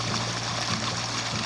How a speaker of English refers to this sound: Alright, but here's what it sounds like when you come down to the creek to gather your water for the evening.